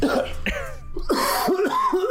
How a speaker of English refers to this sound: Let me get that one really good cough out so then like I'm good and I'm reset.